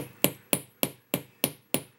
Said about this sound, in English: And now on the round part that connects to your dangle. When you hammer metal, you're actually strengthening it. I chose to use dead soft sterling silver wire, which is very flexible. It opens very easily.